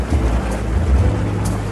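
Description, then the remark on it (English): A steady, low bubbling and gurgling of water runs throughout, a continuous murmuring churn with soft rushing noise on top and no voices. “I hear bubbles in the background. Can anyone hear that? Bubbling sounds.”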